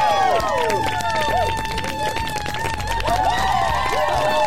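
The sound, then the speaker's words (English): Steady, loud applause and crowd cheering fill a venue as upbeat music plays while performer Megan Stalter comes running on stage in the HBO Max special Human by Orientation, Pride 2021, with no clear footsteps standing out. “So she comes running on stage, and I think she's going to do some crowd work.”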